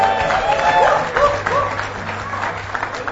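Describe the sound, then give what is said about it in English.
Steady applause from a church audience as the children's pastor comes to bring the message, a dense continuous patter of many hands clapping at a fairly loud, even level, with faint tonal sounds woven through it. “No clapping, please.”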